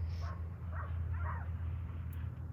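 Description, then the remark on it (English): A few faint dog barks and yips rise over a steady low mechanical rumble of construction work, spaced irregularly across the short stretch with no one talking. “And even in this moment, as I listen to the dogs barking and that construction happening and all these things that I feel like are distracting me from my intention to connect to nature, I have to remind myself that that's all nature.”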